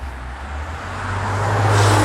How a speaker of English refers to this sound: I'm on the road, so you're going to hear cars, okay? I'm sorry about it.